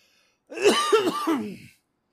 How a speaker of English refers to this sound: Here, let's give it a real quick try. I have to cough again so we can put it in practice.